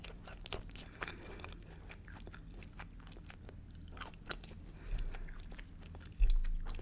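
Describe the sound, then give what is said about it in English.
Wet chewing of reheated food that is no longer crunchy, eaten with ranch and buffalo sauce, with irregular smacking and squishing bites over a low steady hum. No one speaks, and a couple of louder thumps come near the end. “Their buffalo sauce is so good.”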